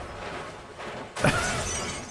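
A car with no engine, a big ram on its front and a dummy inside smashes through a pane of glass: steady rushing noise, then a single loud, sudden crash of shattering glass, with bright debris rattling on afterward. No voices.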